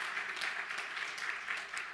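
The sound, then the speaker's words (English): A church audience claps their hands together to give thanks to God, a dense, steady wash of many overlapping claps that sustains evenly with no voices heard. “Come on, let's lift up, let's clap our hands.”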